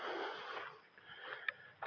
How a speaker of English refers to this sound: So I'm walking uphill right now, in case you're wondering why I'm breathing a little heavier. I can put my mic up a little bit like that. So maybe not breathing directly into the mic.